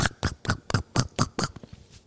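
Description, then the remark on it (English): A pet named Humphrey lapping water loudly, about eight quick wet slurps in a steady rhythm, each a short splashy burst, slowing and fading toward the end. “He's drinking water. He's very loud.”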